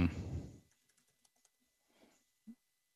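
A brief louder clatter on a computer keyboard, then a handful of scattered, quiet keystrokes tapped slowly at irregular intervals, with no one speaking, as keystroke commands are tried in the JAWS screen reader to drop a place marker.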